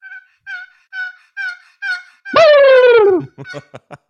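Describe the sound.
Someone imitates turkeys: a run of even, rhythmic hen yelps, then a loud, drawn-out descending call that breaks into quick, stuttering gobble-like bursts. No talking.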